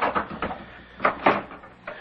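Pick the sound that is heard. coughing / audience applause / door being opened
door being opened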